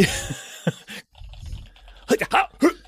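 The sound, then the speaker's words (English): A voice imitates typing with quick clicky mouth noises and breathy squeaks while the person tweets, a few short bursts spaced out over a couple of seconds with brief pauses between them. “Are you typing things the way an anime character would?”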